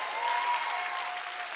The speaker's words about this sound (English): Give the Lord a big clap. Come on, give the Lord a big clap. Come on, clap for him like he's amazing.